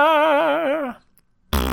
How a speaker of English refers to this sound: Oh. You farted. I did. That's embarrassing for you. Yeah, I'm a little embarrassed.